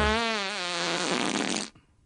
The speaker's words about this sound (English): Yeah, maybe he can fart the virus away.